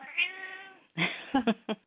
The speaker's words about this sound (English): My cat has to say, too.